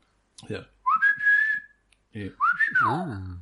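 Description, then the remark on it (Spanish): A person whistles two short calls as a family signal, announcing their arrival while climbing the stairs to the grandparents' home in Tarragona: the first swoops up and holds a steady note, the second rises then bends down, with a hint of voice mixed in. “Y ya también como para un silbido para comunicarse con los canarios también.”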